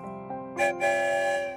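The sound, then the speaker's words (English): A single bright toy train whistle, meaning yes, sounds fairly loud, a steady multi-tone hoot with a brief airy burst, lasting about a second with no talking. “One whistle means yes.”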